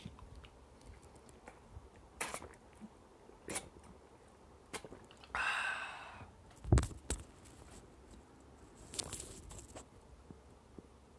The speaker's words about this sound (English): I'm just gonna quickly take a sip of water.